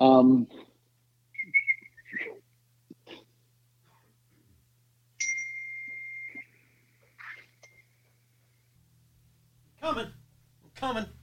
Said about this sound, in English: I tried to whistle, but it wasn't successful.